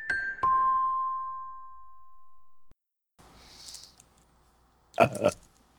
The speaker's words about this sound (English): Did everyone hear that? Yeah. You better edit out that burp because I don't care. I'm not ladylike.